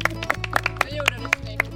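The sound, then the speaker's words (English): A brief round of applause from a few people, led by a grandfather after a sun cannon is fired, sharp claps landing in a loose, fairly quick rhythm over a steady low background hum. “His grandfather leads us in a round of applause.”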